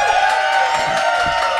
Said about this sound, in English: When you agree with my decision, I would like for you to cheer. Give that a shot right now.